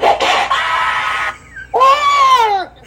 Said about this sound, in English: Was that a SpongeBob scream? I just kept hearing that. I couldn't tell you. Sounds like SpongeBob.